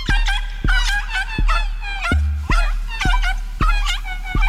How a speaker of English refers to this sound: I kind of lost my mind here. Just like these are not dog barks, these are clown horns.